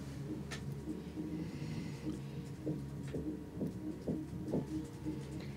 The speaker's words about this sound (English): There isn't a floor above you, but it sounds like there is someone knocking on a door upstairs.